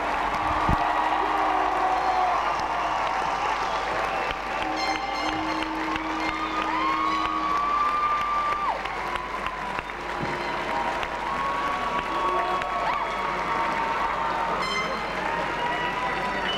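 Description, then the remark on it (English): A crowd claps in a steady, dense round of applause for a young man's birthday, lasting the whole stretch, with scattered cheers and whoops rising above the clapping. “He's a lovely lad, and let's give him a round of applause, because he deserves it, and everyone deserves a round of applause on their birthday.”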